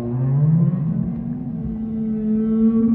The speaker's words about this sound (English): The sound comes again, clearer this time in the water. I recognize it now as whale song, but a warped version of it I could never have dreamed up. It was both enchanting and ghoulish